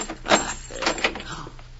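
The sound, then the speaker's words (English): A door lock is worked open: several sharp metallic clicks and clunks in quick succession as the door is unlocked and pulled open, with a faint murmur of voice near the end. “The door, Jay. I'll get it. Simon, just a minute. This door lock.”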